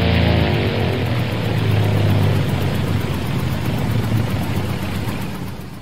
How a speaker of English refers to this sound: Holy smokes, the engine just cut out.